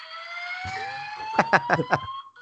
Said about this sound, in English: here's what I was awoken to, and you tell me what you would do if you heard this. The HUD is being investigated. You will be notified when the source of the alarm is identified. Thank you.